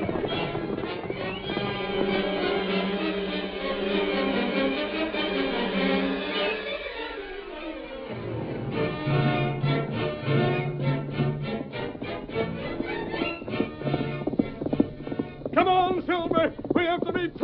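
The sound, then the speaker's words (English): Horses galloping with a group of riders, their hooves clip-clopping in a fast, steady rhythm that grows busier and louder toward the end, mixed with other sustained sounds throughout. “Get your horses. Don't give me an argument. Every last hombre here is riding.”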